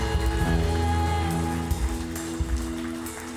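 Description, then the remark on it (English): A church audience clapping hands for the Lord in a dense, steady patter of many hands, with sustained musical tones underneath, and a couple of louder claps standing out toward the end. “Let's give the Lord a hand clap in here tonight.”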